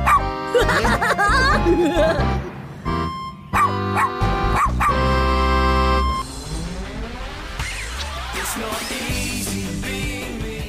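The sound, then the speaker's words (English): A dog barks and yips in a rapid, excited string of sharp calls, loud, with other bright noise and clatter mixed in around it. “Go away, doggy.”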